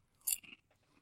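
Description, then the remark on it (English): A sharp, bright crunch of someone biting into a crispy Canadian Szechuan sizzling potato chip, followed by a couple of quieter chewing crackles, with no talking. “Yet I keep eating them because I'm very hungry.”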